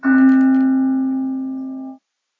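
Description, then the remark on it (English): A mindfulness bell is struck once to close a meditation, clear, its warm ringing tone sustaining and slowly fading for about two seconds before cutting off, with no voices. “you want to ring the bell, and we'll take the mindfulness bell into a closing.”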